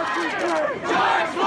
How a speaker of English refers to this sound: I followed protesters, their chants, their anger, into the thick of the crowd. There was a line of police officers, protesters yelling into their faces.